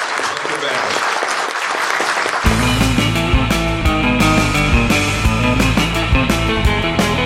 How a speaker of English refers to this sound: Well, I believe that'll wrap it up. Let's give a warm round of applause for the Carlson.